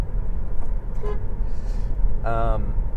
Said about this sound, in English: currently I'm battling with the system here called Sentry and Dash Cam. And what the deal is here, I'm going to honk my horn.